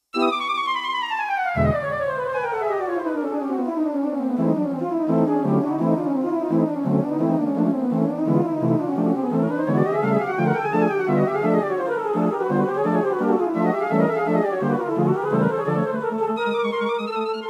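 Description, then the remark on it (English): An arrangement of Nikolai Rimsky-Korsakov's Flight of the Bumblebee (written 1900), heard in the bee cave quest of the 1992 DOS game Ultima 7. Its rapid chromatic melody swoops up and down in continuous zigzag runs over steady, pulsing bass notes. Loud and unbroken throughout, with no voices. “And of course, here's the song you hear,”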